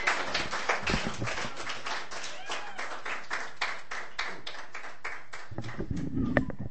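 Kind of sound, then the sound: crowd, audience clapping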